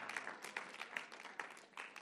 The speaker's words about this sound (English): I need somebody to clap right now because you're sleeping on me.